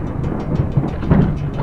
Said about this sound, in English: On that unnaturally humid and sunny afternoon, thunder ominously clapped from heavy storm clouds that loomed off in the distance.